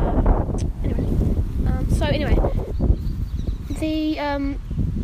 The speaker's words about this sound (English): sorry, there's a bit of wind breeze. It's not usually very windy down here.